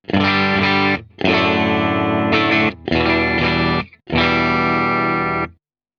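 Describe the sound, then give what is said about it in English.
An electric guitar plays four loud, sustained strummed chords through an MTG tube distortion pedal with a 6205 preamp tube on its clean sound, a mostly clean amplified tone with a touch of grit, each chord ringing out before a brief gap, with no talking. “So the MTG is the tube distortion. There's a 6205 preamp tube in it. This is the clean sound.”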